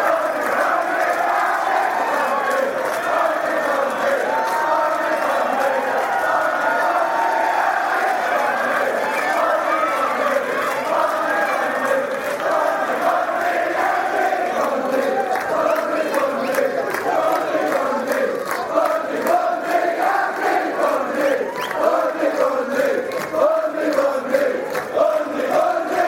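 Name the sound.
crowd cheering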